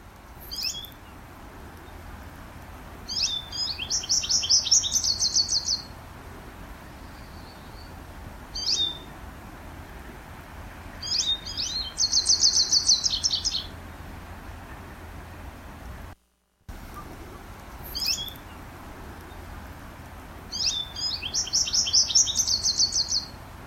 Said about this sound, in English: Well, the bird in the background really sounds like a warbler to me.